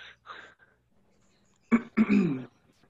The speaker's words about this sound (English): Wait, he's got a cough. I thought he said he had a call. Look at him over there coughing.